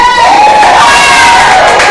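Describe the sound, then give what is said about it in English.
A loud crowd cheers and shouts continuously for all the fathers on Father's Day, a dense wash of voices with high whoops and screams rising over the roar for the full couple of seconds. “So can we just make some noise for all the fathers?”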